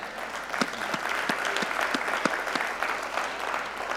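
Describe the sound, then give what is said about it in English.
A crowd applauds steadily for several seconds, many hands clapping at once in a dense, continuous patter with a few sharper claps standing out, moderately loud. “It's easy to clap now, but it sometimes is offensive, okay?”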